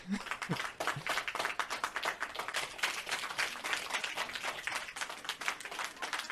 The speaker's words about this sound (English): It's really long. I like how Aqua picked the longest fucking clapping one he can possibly have. And you can't turn it off on the Go XLR either. If you push the button again, it plays again.